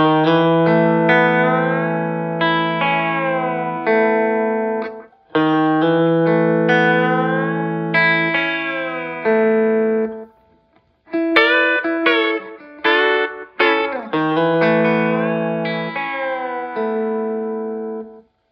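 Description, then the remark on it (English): An electric guitar plays a hammer-on lick on the D string, rolling with pick and fingers: two long ringing, chordal phrases, then a burst of quick, clipped notes with brief gaps before it rings out again. Loud, with no talking. “Of course, on this last part, I'm hammering on the D string. And then, you know, rolling with my pick and fingers.”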